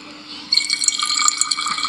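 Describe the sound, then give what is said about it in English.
Water pours steadily into a bottle until it is full, a bubbling, gurgling rush that starts suddenly after a brief quiet hiss and continues with splashy, rising tones. “Yeah, and the recording goes there until the bottle is full.”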